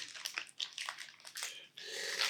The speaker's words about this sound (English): You don't like the wrappers? It's just very noisy.